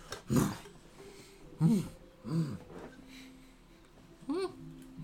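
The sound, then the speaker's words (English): A person imitates a chimpanzee with four short, breathy hooting grunts spaced irregularly over a few seconds, with no talking. “No, that's more chimpanzee.”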